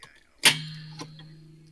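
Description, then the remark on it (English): A cigarette rolling machine gives a sharp mechanical clack with a lingering metallic ring, then a softer second click about half a second later. There are no voices. “What it was my hell cigarette was that rolling slapping machine.”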